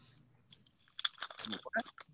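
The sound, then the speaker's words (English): Soft clicks of fingers typing on a keyboard into a chat, a few scattered taps at first, then a quick, dense burst of keystrokes, fairly quiet. “I'm typing.”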